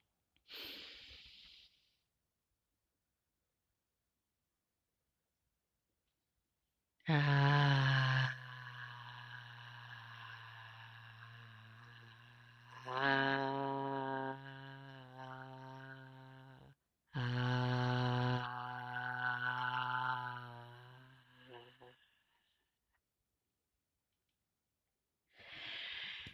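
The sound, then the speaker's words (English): Short breathy rushes of air bookend three long, loud voiced "ah" exhalations that rise and fade one after another, a group saying "ah" as they release their breath together during a conscious breathing exercise. “Thank you for joining conscious breathing exercise, being current here now.”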